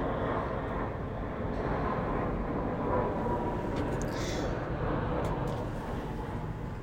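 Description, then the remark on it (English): An airplane flying overhead, a steady, loud roar with heavy low rumble and a broad hiss that holds evenly for several seconds, with no one talking. “Her, okay, pause, plane.”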